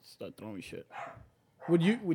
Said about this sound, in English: That's my dog in the background.